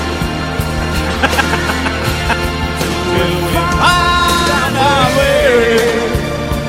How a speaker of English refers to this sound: Hey, is that your chicken making all that noise? Jerry loves the morning. Who? Little Jerry Seinfeld.